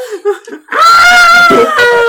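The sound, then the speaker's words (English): A person's voice lets out a loud, sustained, high-pitched scream, imitating a character's shriek. It starts abruptly after a brief soft vocal murmur and holds steady for over a second. “She screams.”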